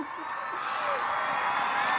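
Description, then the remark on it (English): A crowd cheers and applauds to welcome a speaker into the room, a steady, loud wash of clapping and voices that holds evenly for about two seconds. “What a crowd, and what an amazing welcome.”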